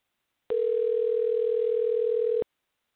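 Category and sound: signal or alarm, telephone call dialing tone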